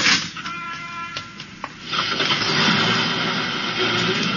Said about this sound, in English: And as the bus started up, the driver said...